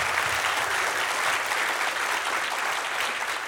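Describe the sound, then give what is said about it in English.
An audience claps together for audience members who run nonprofits, a steady, dense burst of applause, a loud crackling wash of many hands that holds evenly for several seconds with no voices on top. “Can we clap their hands?”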